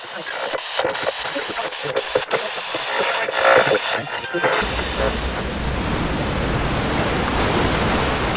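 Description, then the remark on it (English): Stormy sea waves roar steadily at night in a dense, hissing wash of surf, swelling partway through as a deep, heavy rumble joins and holds to the end. “It is dark and stormy at sea.”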